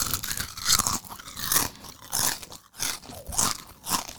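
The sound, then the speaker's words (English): Loud crunching of chips being chewed, with bursts of crisp crackling repeating roughly every half second to second, no talking. “That had so much crunch to it.”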